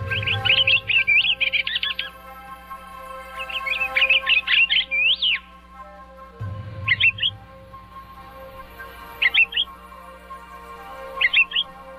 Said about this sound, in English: The pine grosbeak song is a sweet-sounding warble, and its call a three-note whistle.